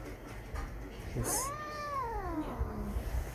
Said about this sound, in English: And the cat's meowing.